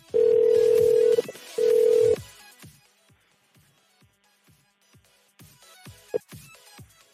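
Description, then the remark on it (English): A British telephone ringback, heard while calling a photography business number, purrs in two loud, steady buzzing bursts with a short gap between them, followed by quieter scattered clicks and faint background sounds. “British ringtone.”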